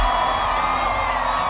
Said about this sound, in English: All kinds of Native Americans, cowboys, mobsters, flappers, and settlers cheer with their hands in the air like crazy college students.